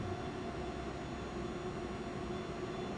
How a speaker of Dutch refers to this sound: Een hele moderne tram. Nou, hoe vond je het nou, terwijl die tram vertrekt, hoe vond je het nou om hier te zijn nadat je dat hele verhaal hebt uitgezocht?